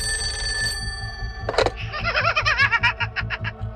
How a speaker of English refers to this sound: The babysitter hung up, hoping the creepy call was just a prank. But then, the phone rang again.